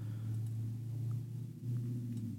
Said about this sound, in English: There's a loud cars going by.